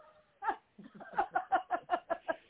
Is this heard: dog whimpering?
yes